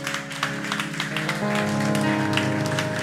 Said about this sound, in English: Give the Lord a clap of faith.